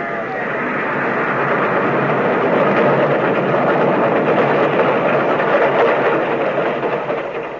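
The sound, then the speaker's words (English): A train rumbles past, a dense, steady roar of rolling wheels and engine that swells at first, holds loud throughout, and eases slightly at the end; its bell and whistle sound. “The train was coming closer. I could hear its bell. Or its cry, its whistle crying.”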